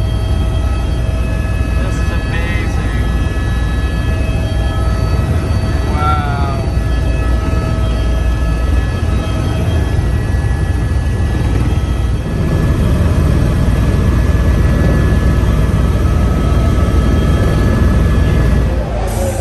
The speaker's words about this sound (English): About to hop in our ride to the helicopter. Here we are in the helicopter.